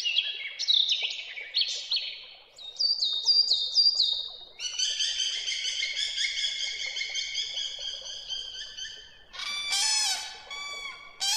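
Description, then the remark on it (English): A dense chorus of birds chirping and singing, with bright overlapping whistles, trills and rapid tweets filling the air continuously, lively, with no one talking. “Two studies published last year in Scientific Reports said that seeing or hearing birds could be good for our mental well-being.”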